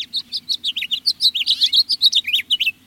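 A house finch sings a rapid, warbling song of bright chirps and slurred notes, continuous, with no talking over it.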